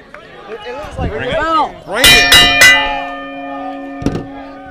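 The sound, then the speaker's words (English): A ring bell at a wrestling event is struck three times in quick succession from the commentary table, loud metallic clangs whose bright tone keeps ringing afterward, with one more strike later. A voice talks just before the bell. “A lot of animosity towards this commentary table once I rang that bell.”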